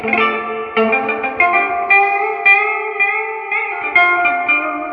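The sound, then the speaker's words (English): An electric guitar plays through a Deluxe Reverb amp with its reverb on, one of two amps connected to a Whirlwind Selector AB box: a steady run of picked chords and sustained notes, each attack trailing into a warm, washy shimmer, with no talking. “So right now, the deluxe reverb with reverb on.”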